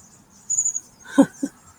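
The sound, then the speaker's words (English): A flock of bushtits, tiny birds, coming through and calling: thin, very high twittering notes in a short run, followed by two brief, fuller chirps. The calls are soft and there is no talking. “We have a flock of bush tits coming through. They're these tiny little birds and they make such happy, happy noises.”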